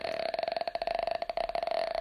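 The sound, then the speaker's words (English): A person holds a steady vocal fry for about two seconds, a low, creaky rattle of rapid, even pulses, like a slow buzz, with no words spoken. “Today, I was learning about the vocal fry, and it's when you do your voice like this.”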